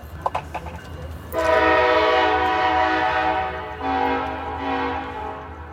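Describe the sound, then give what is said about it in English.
A freight train moving very fast rumbles past, sounding its horn loudly in two long, sustained blasts, the second following a brief dip. A few sharp clicks come before the horn starts. “Last night, a number of people were able to get on the train, but they're telling me that now there's the trains are moving very fast, so it's difficult to get on board.”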